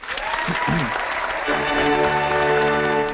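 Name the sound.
clapping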